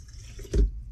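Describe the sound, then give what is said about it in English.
About one cup of milk pours briefly into a container for making hot chocolate, a short gurgling splash that swells and fades within a second against a soft background hiss. “So maybe it just makes it extra milky. I don't know. All right. That's good. That's good. That looks good. All right. Pour it in.”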